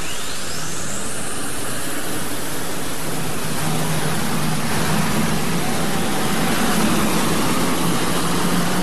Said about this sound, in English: Now listen to the wheel spin on this tractor when she leaves the starting line. You'll hear those big whistle and pop, and watch those tires that these turbines put out the fire.